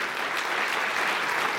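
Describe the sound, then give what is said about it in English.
A crowd applauds steadily, a dense wash of many hands clapping at a constant, fairly loud level, with no voices standing out. “Yeah, if you, round of applause.”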